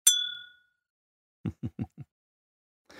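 A single bright clink of glasses raised in a toast rings out and fades over about half a second, followed after a pause by four quick, soft, dull thumps in a row.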